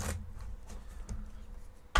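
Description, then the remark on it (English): Playing cards being shuffled during a red-or-black guessing drinking game, in two short, papery bursts, one at the start and a louder one at the end, with soft rustling and a low background hum between. “I'm trying to shuffle these a little better.”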